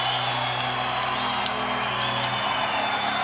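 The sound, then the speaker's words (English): A dense, steady roar of a large concert crowd in Atlanta, Georgia cheering after the band's final song and chanting for one more song, with scattered whoops and whistles rising above the wash of noise and a low hum underneath that cuts out near the end. “The crowd kept cheering well beyond the end of that recording, chanting for one more song for a solid 5 minutes.”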